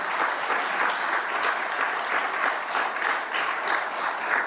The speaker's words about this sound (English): Okay, round of applause.